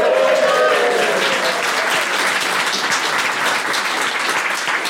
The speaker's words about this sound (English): You beat the 23rd in the world for world quizzing. That's pretty impressive. You should give yourselves a big round of applause.